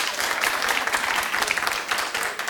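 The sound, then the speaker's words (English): An audience claps steadily throughout in response to a call to clap if they had looked at Jennifer Lawrence's hacked pictures, a dense, continuous patter of many hands with bright, crisp slaps and no break in the sound. “Clap if you've looked at Jennifer Lawrence's hacking pictures.”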